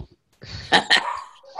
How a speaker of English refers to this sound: The dog. The dog. Even the dog has an opinion. Sorry about this. Dogs always have opinions. It's close to his dinner time, so he doesn't shut up when it's time for supper.